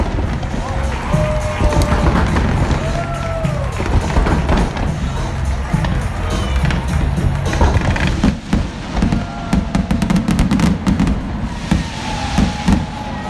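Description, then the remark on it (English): Fireworks burst repeatedly over a stadium at the end of the baseball All-Star Game, a dense run of loud booms and crackles layered with crowd noise, with sharp clusters of pops toward the end. “Oh my God, that is a lot of fireworks.”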